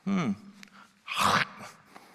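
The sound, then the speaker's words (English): A voice imitates a bite: a short low voiced grunt, a brief pause, then a loud, harsh, breathy crunching burst lasting about a third of a second, rather like a throat being cleared. “That was supposed to be the sound of a bite.”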